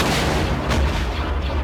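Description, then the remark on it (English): Heavy, sustained fire from multiple cannons, coming down from above and lighting up the area in front of a cave, rumbles continuously, with deep low booms and a sharper blast burst near the middle, loud and dense throughout with no pauses. “Heavy fire from multiple cannons.”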